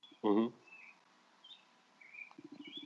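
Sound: birds chirping outdoors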